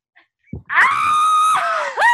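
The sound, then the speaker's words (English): A person lets out a loud, strained yell held for about a second, then breaks into a second rising shout right after. The voice is harsh, with no other talking. “Everybody in my apartment building hates me because all I do is yell.”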